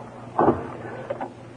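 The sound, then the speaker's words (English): An apartment door is opened: a muffled thud and rattle from the latch, followed a moment later by a couple of lighter clicks, over a low steady hum. “As I opened the door, I wondered what the caper was all about.”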